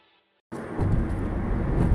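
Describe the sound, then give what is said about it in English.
After a brief near-silent moment, a steady, loud low rumble of car interior road noise sets in and continues, the hum of a vehicle driving with no one speaking. “Because I'm in the car.”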